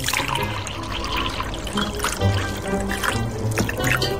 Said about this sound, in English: I've got some whiskey at home that I don't drink. I really don't drink whiskey that often. So here, I'm just pouring some in a glass.